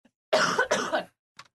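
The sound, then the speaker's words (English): Two harsh coughs in quick succession from someone who has been sick, loud and raspy, followed by a brief pause and a faint catch of breath near the end. “Really quick before I do that, I'm going to cough again.”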